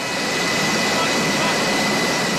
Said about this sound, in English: U.S. Navy helicopters began making dozens of trips every hour to deliver water.